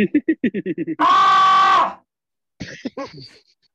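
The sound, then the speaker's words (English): A quick run of short, breathy vocal bursts, then a man's loud sustained scream lasting about a second with a short, boxy echo trailing off. A few brief vocal sounds follow after a pause. “It sounds like he's in a bathroom.”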